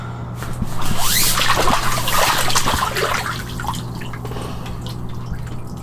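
Water drips and splashes in a hot tub, a busy burst of sloshing and trickling that swells early on, then settles into steady dribbling over a low constant hum.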